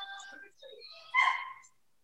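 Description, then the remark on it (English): A dog lets out a single sharp, high bark, preceded by a brief whiny, whimpering sound. “Listen, if you guys need help watching that dog, whoever's dog that is, you know, just bring him over to Good Boys.”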